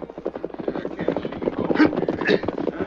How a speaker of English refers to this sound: The days travel ahead, the outlaw band camped in the hills. Their leader, a man named Varley, waited as a horse and rider galloped in from the east.